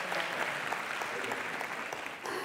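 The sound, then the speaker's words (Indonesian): An audience at the live broadcast of the Satu Dekade Mata Najwa show from Ciputra Artner, Jakarta, claps in sustained, dense applause, a steady wash of many overlapping hand claps at an even loudness with no voices standing out. “Sekali lagi dong tepuk tangan.”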